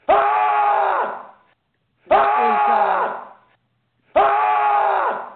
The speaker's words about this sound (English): Okay, shut up. You can stop screaming now.